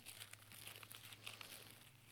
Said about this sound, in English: I like to hear the rustling of pages. That means you've brought your scriptures with you and you're turning those pages. I like to hear those pages turn.